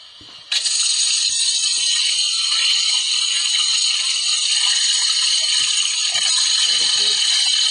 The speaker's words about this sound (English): See what this one is. The toilet flushing. I know, I like it.